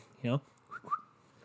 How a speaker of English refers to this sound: And then a little whistle in the background.